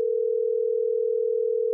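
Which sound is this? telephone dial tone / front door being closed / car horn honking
telephone dial tone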